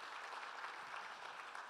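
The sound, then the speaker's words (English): A church audience applauds steadily, many hands clapping together in a dense, sustained burst without a break, giving a clap offering to the Lord. “Yeah, come on, give the Lord a great clap offering.”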